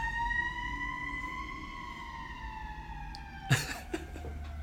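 A fire truck siren wails in a long, sustained tone that slowly dips in pitch as it passes, fairly loud over low rumbling traffic, with a brief cough-like burst near the end.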